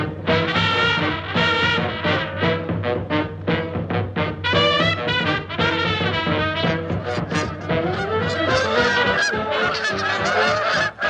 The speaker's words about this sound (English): Oh, there they are, flying overhead, the pale-bellied Brent geese, arriving into Ireland now from their nesting grounds in the high Canadian Arctic, a journey of some 4,500 kilometres or more. And here they are to spend the winter with us.